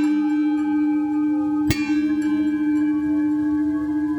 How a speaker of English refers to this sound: There was a little gong outside where she picked up a wooden mallet lying on the ground in front of it and hit it twice.